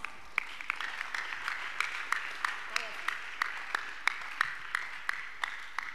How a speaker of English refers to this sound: Clap for the white woman here.